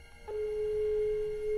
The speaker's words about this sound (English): And then the phone goes dead.